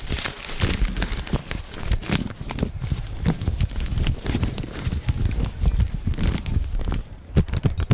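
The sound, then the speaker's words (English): Steady crinkling and rustling of a printed entry slip being unfolded and opened, with rapid irregular crackles and snaps continuing for several seconds and no one talking. “Let me open up this entry.”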